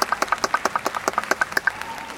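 A short round of applause: quick, steady, bright claps in a rapid rhythm, sounding like only a few hands, fading out after about two seconds.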